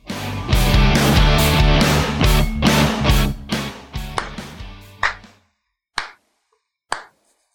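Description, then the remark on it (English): Hands clap in a steady beat along with upbeat intro music, sharp crisp smacks cutting through the mix; the music then stops and two more lone claps ring out with pauses between them. “Are you clapping? Yeah, I was just clapping along.”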